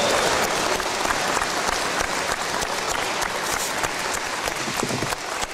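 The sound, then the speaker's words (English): Sustained applause from a large audience for Coldwater High School seniors at a ceremony in the Coach Floyd Eby Gymnasium at Coldwater High School, a dense, steady wash of many hands clapping at an even loudness throughout, with no voices standing out. “Ladies and gentlemen, please show your appreciation for these Coldwater High School seniors with a warm round of applause.”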